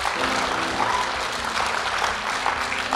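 A church audience applauds steadily during a service for a few seconds, a dense, even wash of clapping hands with no voices rising above it and a faint low hum underneath.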